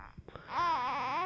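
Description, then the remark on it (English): A baby babbles: a few soft, short syllables, then a loud, drawn-out vocal sound whose pitch wavers up and down, with no other voices. “Don't let the baby talk.”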